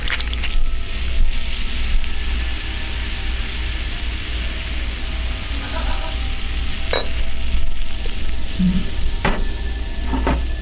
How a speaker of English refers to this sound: And now, crack open that bottle of the real thing and carefully fill the glass.